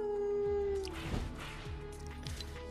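A single drawn-out, wolf-like howl from the Howl emote in a video game item shop holds a steady tone for under a second, then gives way to a busy, noisy electronic backdrop with soft rhythmic thumps.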